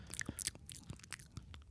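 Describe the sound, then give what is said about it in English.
A voice mimics ASMR-style wet chewing mouth sounds: a quick series of soft, squelchy smacks and clicks, irregular and intimate, like munching soggy cereal. “Looked like a chewing on soggy a cereal.”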